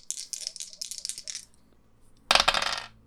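Dice rattle in a quick series of bright clicky bursts, then clatter loudly across a table in one dense tumble before settling, rolled in a tabletop role-playing game to manipulate someone and landing snake eyes. No one speaks.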